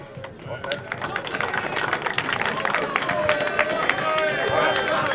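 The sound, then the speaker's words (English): A crowd applauds steadily for about five seconds, a dense, even patter of many hands clapping with a murmur of voices underneath, holding at a fairly loud level throughout. The crowd is applauding Connacht GAA for the use of its facilities after a GAA game. “Like, it's in savage shape all year round, so just a round of applause for them as well, please.”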